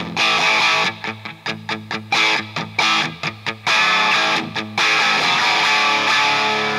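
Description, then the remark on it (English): Crunchy overdriven electric guitar through an amp's clean channel, with the gain wound up a little and the reverb pulled back, gives a plexi-style crunch rhythm tone: choppy, rhythmic chord stabs that give way to a held, ringing chord at the end, loud with little reverb and no voices. “on that clean channel, you get a pretty good sort of plexi sort of a sound, you know, like a pretty good crunch sort of rhythm tone”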